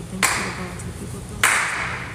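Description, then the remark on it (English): A group of people in a park claps to keep a steady beat for a song, the sound swelling in two broad bursts about a second apart and then carrying on as a dense, unsynchronized patter, with faint voices talking underneath. “I just need a steady beat”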